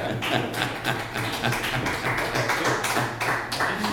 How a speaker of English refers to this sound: Oh, you just, boy, that was a lot of applause. Relax back there. More than I'm used to.